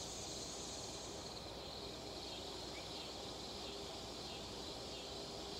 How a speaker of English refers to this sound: The sound of cicadas, crickets, and frogs all mixed in the air.